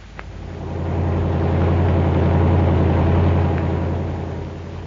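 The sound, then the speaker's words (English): A fast car's engine drones steadily as the vehicle drives along, its low rumble swelling louder through the middle and easing off at the end, with no voices. “Got a fast car. We're making a call at Twin Oaks.”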